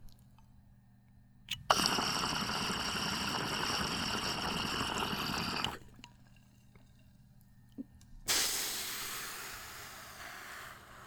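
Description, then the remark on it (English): Steady watery gurgling and bubbling of a bong being hit with marijuana, in two long bursts separated by a quiet pause with a faint click. No voices. “And while you're thinking about that, we're going to take a small break so I can hit this marijuana. If you hear gurgling, coughing, grow up.”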